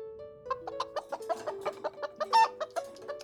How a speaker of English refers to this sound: They had a good, when they were talking about Chicken Run, they had a lot of good chicken drops.